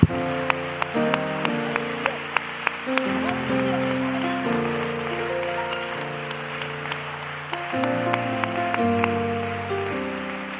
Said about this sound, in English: And I just want you to clap your hands unto the Lord. Give God praise.